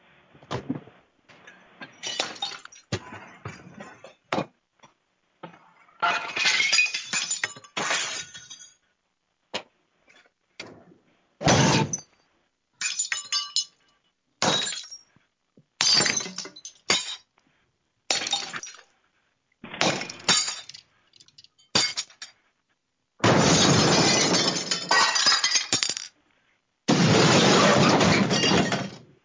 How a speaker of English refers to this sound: Listen, lady. I'll break some more glass in here. Don't make me do it.